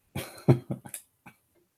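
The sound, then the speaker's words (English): A deliberate cough: a rough throaty burst followed by a few shorter hacking bits trailing off into quiet, with no talking around it. “Do I have to do a cough Lovecraft?”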